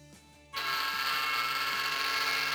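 A train passing a house: a low hum suddenly swells into a loud, steady roar with a hiss across the top and a regular, rhythmic low clatter underneath. No one speaks.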